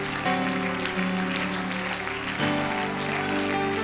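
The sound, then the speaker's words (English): An audience claps steadily in a large, reverberant church, the dense applause continuing throughout while sustained organ-like chords play underneath and shift partway through. “Clap your hands and thank God you're in the church tonight.”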